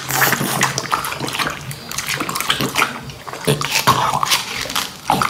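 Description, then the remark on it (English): A Labrador chomps wetly on watermelon, with juicy, splattering bites and slurps repeating irregularly and fairly loudly throughout, with no talking. “And it's just like hours of like Labradors eating watermelon.”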